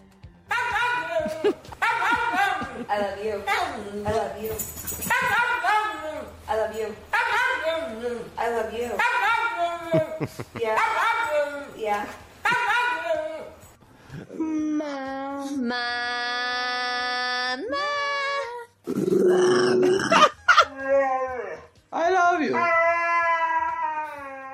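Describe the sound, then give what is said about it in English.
A dog yowls and whines in long, pitch-bending bursts that mimic the rise and fall of human talk, loud, with a sustained high howl partway through. “So let's end on dogs talking as humans.”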